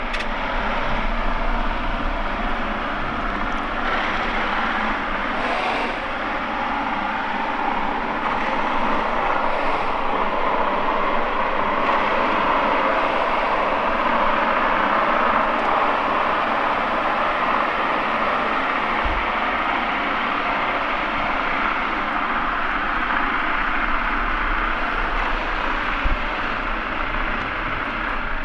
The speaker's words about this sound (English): I listen under the water to see what kind of sounds I can hear. The first thing I hear is the engine of a huge barge, which is moving from O'Connell Bridge up the Liffey. And underwater you can hear the gears and the engine grinding.